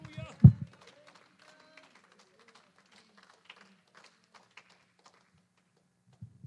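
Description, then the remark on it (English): A church audience claps hands softly in the Lord, a dense, irregular patter of many overlapping claps after one sharp thump at the start. The clapping fades out toward the end beneath faint murmuring voices. “I wonder if we can clap our hands in the Lord.”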